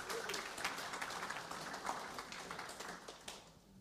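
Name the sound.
audience applause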